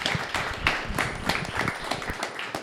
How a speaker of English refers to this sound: Let's give Brad and Sean a round of applause for them being here tonight.